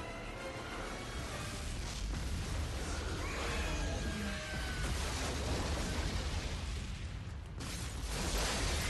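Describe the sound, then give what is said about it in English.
A loud movie-style explosion roars continuously for several seconds, thick with crashing debris and shattering glass, the dense rumble never letting up. No one speaks. “Oh, don't look back at all the glass shrapnel.”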